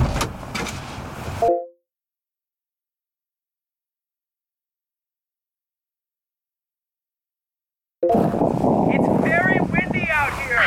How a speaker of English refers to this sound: For the record, we are on the beach and it is very windy. I told you to bring your jacket.